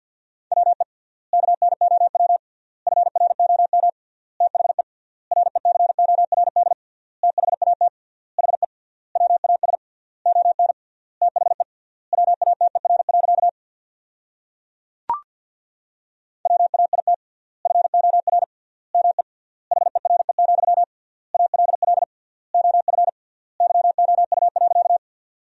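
Fast Morse code beeping at 50 words per minute with 3x word spacing, sending sentences built from the top 500 words, on a single steady mid-pitched tone: dense bursts of dots and dashes separated by short pauses, with one sharp click partway through and no voices.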